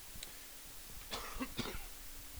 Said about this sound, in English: I'm in my basement right now. I'm doing this and I'm pacing. And I'm literally, like, breathing kind of heavy because I'm a fat guy and I'm pacing. And it keeps making me cough, and it makes me think, this basement's probably got dust